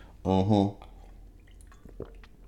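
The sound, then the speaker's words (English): Someone takes a sip of water: a short voiced murmur, then quiet wet mouth clicks and a soft swallow, with no words spoken. “Here, let me get a drink of water for this.”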